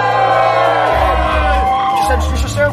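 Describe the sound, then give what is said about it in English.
A crowd at a live hip-hop show cheers and whoops loudly for the keyboard player over a sustained, dense roar, with shouts and yells rising out of the noise and a low rumbling underneath throughout. “Make some noise for the boy on the keyboards now.”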